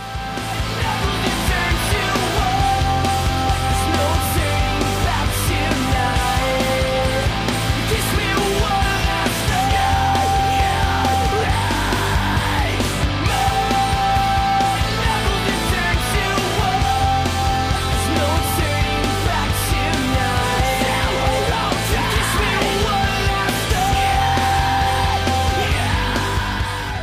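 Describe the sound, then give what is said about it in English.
A loud, dense rock song with harsh screamed vocals over distorted guitars and steady, driving bass, staying intense and full throughout with no pauses, in a screaming emo style. “This was back in like that height of that screaming emo scene”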